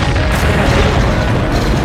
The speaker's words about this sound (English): First wave was penetrating their perimeter with the second advancing, and then the whole town just went up. An explosion chain.